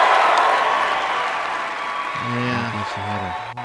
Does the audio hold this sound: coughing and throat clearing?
no